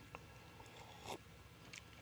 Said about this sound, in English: She kind of cooked up this real mean, almost like a shandy. So, 66% Budweiser, 33% New Glarus Brewing Company out of Wisconsin, the Raspberry Tart. It's just a delicious little beverage. So I'm going to take a little sip here.